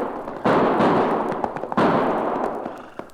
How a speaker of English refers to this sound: Not only did I hear those gunshots, Cherokee, but now I can see where they came from.